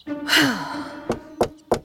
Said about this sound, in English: With Spotty's encouragement, Hasty, holding a mango cake, knocked expectantly on Lenta's door.